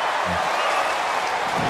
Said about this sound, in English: Crowd goes nuts, of course.